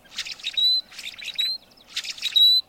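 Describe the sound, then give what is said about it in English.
Blackbird calls repeat three times, each a burst of scratchy, buzzy chatter ending in a thin, high, sustained whistle, with brief pauses between phrases and no voices. “By addressing climate change, preserving wetlands, and preventing pollution, we can help these unique blackbirds and ourselves.”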